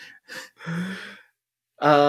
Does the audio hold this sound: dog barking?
no